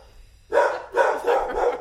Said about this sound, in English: Come on in and listen to the barking.